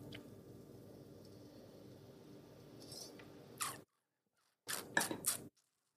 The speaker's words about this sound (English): But I'm going to take a sip here while I'm going off on mochas.